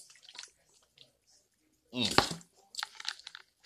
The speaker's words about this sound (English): My goodness, let me get some water in my system. Get some water.